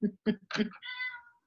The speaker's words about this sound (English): You see the cat agree. You heard the cat. Doesn't like kale.